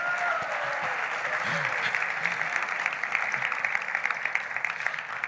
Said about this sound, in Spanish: Gracias. Un aplauso para los actores.